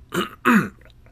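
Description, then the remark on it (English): Two quick, harsh bursts of throat clearing and coughing, fairly loud, separated by a brief pause with no talking. “Those coughs are probably going to be loud.”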